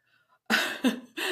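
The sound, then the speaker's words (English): Three harsh coughs from a person sick with COVID come in quick succession, each a loud rasping burst, after a brief quiet moment. No one speaks. “The spicy cough finally caught up with me.”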